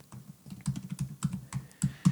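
Typing on a computer keyboard, with quick, irregular keystrokes clicking at a moderate, steady pace. No voices are heard.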